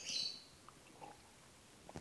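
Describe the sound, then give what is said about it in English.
Birds chirp faintly, with a short, shrill burst of twittering at the start, then quieter, scattered little tweets against soft background hiss. No one speaks. The birds are the speaker's own. “My birds, can you hear them? They agree.”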